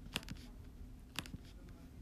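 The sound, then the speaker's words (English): Soft tapping on a phone screen: a few quick clicks in small pairs separated by a pause, over a quiet background hum with no talking. “Back to typing the thing in the bobber.”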